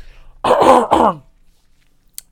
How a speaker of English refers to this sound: That was not me diving into God of War. That was me clearing my throat.